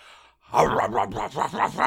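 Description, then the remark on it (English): A man's voice imitates a Great Dane barking, a quick run of five or six deep, gruff woofs delivered fairly loud after a brief pause. “I can do dogs, different types of dogs. Let's have a dog then.”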